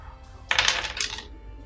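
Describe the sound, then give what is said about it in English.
A quick rattling clatter of seven dice rolled for a flight check, tumbling across a hard surface, lasting under a second with a couple of bright bursts, then settling into quiet room tone. “Okay, roll flight. 7 dice.”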